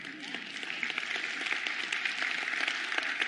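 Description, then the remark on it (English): A church audience applauding together for the 25 people baptized in 2018, a dense, steady wash of many overlapping claps holding an even, moderate level for the full few seconds. “If you want to clap, you can.”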